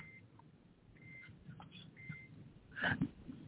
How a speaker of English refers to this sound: That's why you had a beep beep.